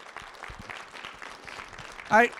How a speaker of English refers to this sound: Let's give the Lord a clap offering right now.